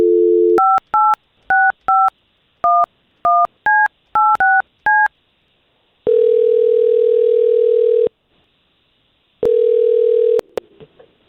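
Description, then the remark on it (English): A telephone call is dialed: a short low tone, then a quick string of about a dozen two-pitch touch-tone beeps, followed by two long steady ringback tones with a pause between them. “We're going to try to get her on the line and talk to her first.”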